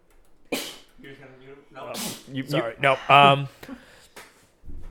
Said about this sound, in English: Someone else is going to talk, I'm going to take a huge sneeze.